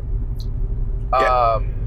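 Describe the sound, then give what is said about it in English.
A car rumbles past on the road, overtaking a line of cars, with a steady low engine drone, and a brief bright tonal burst rises over it near the end. “He's gonna Indian run this entire line of fucking cars apparently.”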